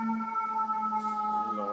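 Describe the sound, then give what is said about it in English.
An emergency vehicle siren, heard outside from a stoop, holds a steady, sustained tone with layered harmonics, sounding loudly and continuously throughout, with no voices over it. “Y'all hear the sirens, Lord Jesus.”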